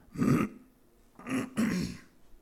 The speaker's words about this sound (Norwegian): Jeg kremta litt, men det ikke korona. Det kan jeg garantere dere.